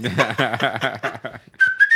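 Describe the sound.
Rhythmic, breathy laughter bursts give way to a short, clear whistled note that rises slightly in pitch, held for under half a second.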